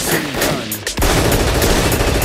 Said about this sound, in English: It's a gunshot.